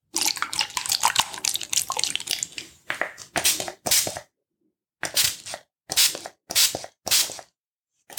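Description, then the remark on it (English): A spray bottle hisses in a dense run of quick squirts, spraying water onto a person's neck, then slows into separate short bursts with pauses between them, moderately loud with no voices. “So I'm just going to give your neck a little spray down to relieve any stiffness in there.”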